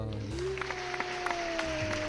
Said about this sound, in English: Applause.